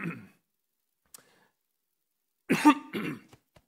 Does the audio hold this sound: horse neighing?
no